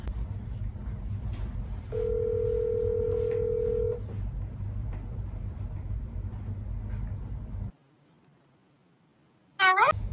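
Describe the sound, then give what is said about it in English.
A steady telephone dial tone sounds for about two seconds over a constant low hum as a phone is readied for a prank call, followed by near silence and a short warbling electronic burst at the end. “we are going to do our third and final prank call as Luca will get the phone ready to call our third victim”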